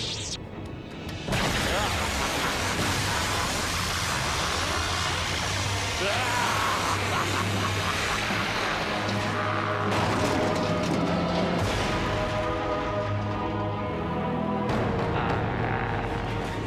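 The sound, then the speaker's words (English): Loud, continuous crackling electric buzz of Force lightning as Sidious strikes Yoda, harsh and sizzling with a steady low hum underneath, surging without a break for about fifteen seconds after an abrupt start, with pained vocal strains mixed in. “Alright, so Yoda takes it pretty hard from Sidious there with the Force Lightning in order to save Anakin”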